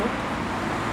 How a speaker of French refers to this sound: C'est la route de Ferney. Là, on rentre bientôt dans les heures du soir. Il y a beaucoup de trafic dans les deux sens, d'ailleurs plutôt dans ce sens-là.